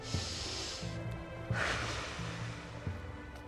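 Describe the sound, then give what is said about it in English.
Two slow, deep breaths with airy, hissing texture during a breathing exercise: a long drawn-in inhale through the nose followed by a gusty exhale through the mouth, fairly quiet with no talking. “Now inhale through the nose and exhale through the mouth, without talking.”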